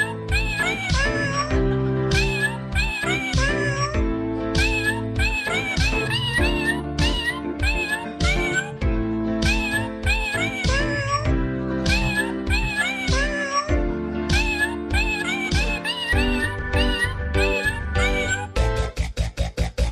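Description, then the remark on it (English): Cats meow over and over in quick, pitch-gliding calls, loud, layered over steady music that plays throughout without a break. “I'm scared those little cats would hinder my chances on the Tinder”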